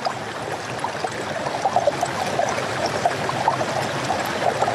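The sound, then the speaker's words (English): Steady flowing river water babbles and gurgles continuously, a dense rushing wash with small bright splashes scattered throughout, and no voices. “Maybe washing your face and your body with the river.”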